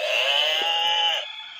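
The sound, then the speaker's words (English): A loud rooster crow sound effect, used as a quiz buzzer, rings out once, a bright sustained cry lasting just over a second before cutting off abruptly, with no talking. “Get out your barnyard buzzers.”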